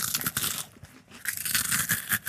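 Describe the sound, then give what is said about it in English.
Dry, brittle crunching of a dehydrated peach from a habitat's food supply, a run of crisp crackling bites with a short pause near the middle, fairly loud with no voices. “So if you want a nice ripe peach in here, you can have one. But it'll be dehydrated.”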